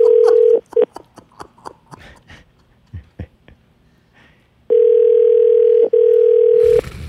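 A steady telephone tone breaks into a quick run of clicky keypad presses as a number is dialed to call the caller's dad, then a long, loud ringing tone sounds with a brief hitch in the middle.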